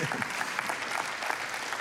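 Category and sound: crowd, audience clapping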